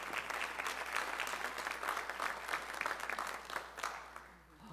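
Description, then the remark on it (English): An audience applauds newlyweds just back from their honeymoon, at a church service with a sermon: steady applause for several seconds, a dense patter of many hands clapping at an even level before it begins to thin out at the end. “And let's give them a hand clap today.”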